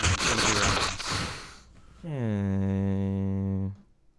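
A person blows their nose into a microphone: a long, rough, breathy blast, then a steady honking tone that holds for about a second and a half before cutting off.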